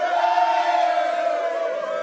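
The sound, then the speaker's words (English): A crowd cheering sound effect: many voices cheering and shouting in a steady, loud roar, sustained for a couple of seconds with no individual words standing out. “Dude, we always have a consistent, happy crowd, and I cannot be happier about it.”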